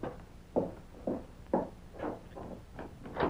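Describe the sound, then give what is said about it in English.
The deputy's keys are tried one after another in a door lock to find the right one, giving a series of about eight short rattling clicks at an uneven pace, fairly quiet, with no voices. “Get him while I find the deputy's keys and unlock the door.”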